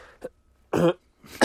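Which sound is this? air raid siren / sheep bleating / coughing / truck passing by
coughing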